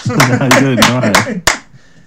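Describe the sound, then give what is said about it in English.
A single person at home claps about five sharp, evenly spaced times to welcome comedian Carl Donnelly to an interview, while a voice talks excitedly over the claps, then the clapping stops and it goes quiet. “It's a testament to your experience as an audience member that you can lead a round of applause on your own in your house.”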